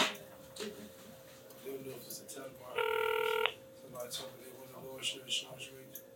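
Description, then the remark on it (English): A single short electronic phone ring from a call ringing out, a bright buzzy tone lasting under a second, sounds mid-clip, clear, against a low steady hum and faint background noise. “It would just keep ringing just like this if it is me.”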